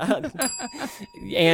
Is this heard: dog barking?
no